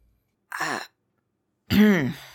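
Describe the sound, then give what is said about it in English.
A woman clears her throat twice, two short voiced rasps about a second apart, the second louder and longer, with no talking around them. “Feel like clear her throat.”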